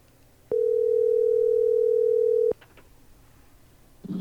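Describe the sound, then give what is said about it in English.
A loud, steady telephone dial tone hums for about two seconds, then cuts off into a few faint clicks and quiet, before another low tone starts right at the end. “Go ahead and dial.”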